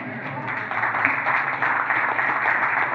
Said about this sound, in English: I'm not going to say that first service applauded louder than that, but because I wouldn't want you to...